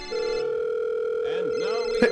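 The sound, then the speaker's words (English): A mobile phone rings with a steady, continuous electronic tone that holds for about two seconds, fairly loud, with faint voices murmuring underneath near the end. “Your mobile's ringing now.”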